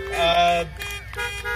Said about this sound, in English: I love being honked at, especially when it's something like this.